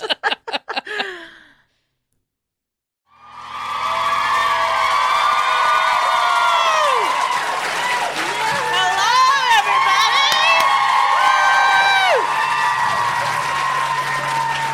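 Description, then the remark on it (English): A live audience in Boston erupts into sustained cheering, whoops and applause, with high shouts rising over a dense wash of clapping for about twelve seconds after a few opening spoken syllables and a brief pause. “What a crowd.”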